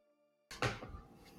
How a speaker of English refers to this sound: Oh, that was a clap.